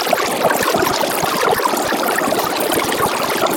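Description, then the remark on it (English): Real audio of a GOP debate, about an hour and 45 minutes, extremely sped up and compressed into about 10 seconds, blurs into a dense, continuous babble that sounds like a trickling stream, steady and fairly loud throughout, with no words distinguishable. “I sped this up and compressed it over and over again until it was down to 10 seconds.”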